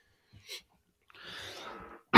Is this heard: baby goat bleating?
no